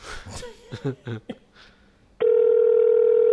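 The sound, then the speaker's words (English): Brief indistinct talking, then a loud, steady telephone dial tone of an outgoing cold call starts abruptly and holds at one unbroken low-mid pitch for over a second until the end. “Give him a call. This is going to be a cold call.”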